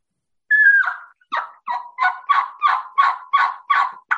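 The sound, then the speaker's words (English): A run of about eight hen turkey yelps from a turkey call, loud, starting with a longer drawn note and then falling into a steady, evenly spaced rhythm, with no talking. “Yelping again, backbone. All I'm doing is going.”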